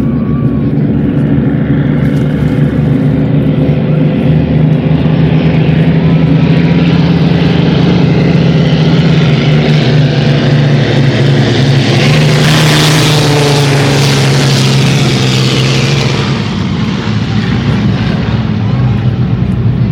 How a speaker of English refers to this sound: Gosh, it's so much fun to hear those sounds. Love hearing the aircraft engines out there on the water.